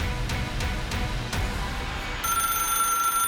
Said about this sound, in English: The telephone was ringing.